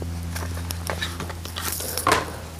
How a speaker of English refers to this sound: I learned how to shuffle cards, actually. Let me get these out.